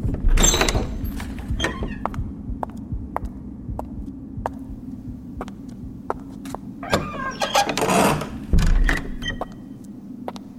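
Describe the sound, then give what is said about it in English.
A library door is flung open with a loud rattling burst, followed later by a second clattering bang, all over a steady low throbbing hum and faint regular ticks. “I ran quickly up the steps and threw open the door.”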